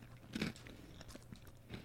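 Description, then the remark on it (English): Crisp crunching of expired paprika potato chips being bitten and chewed, with a loud first bite followed by several quieter crackling chews over a low steady hum. “Okay, I'm going to try these paprika ones real quick.”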